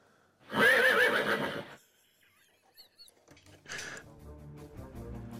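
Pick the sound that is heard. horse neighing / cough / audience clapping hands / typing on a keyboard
horse neighing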